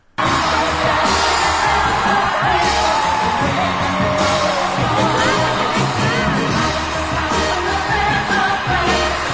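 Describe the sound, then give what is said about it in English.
A large crowd roars and cheers continuously, loud and dense, with yells and whoops rising out of the sustained wall of noise for the whole stretch. “All right, let's listen to the crowd roar.”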